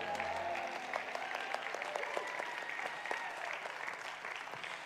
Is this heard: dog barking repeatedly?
no